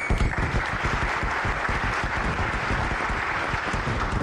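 A steady round of applause for all dads on Father's Day from a group, dense clapping that stays loud and even throughout with no voices rising above it.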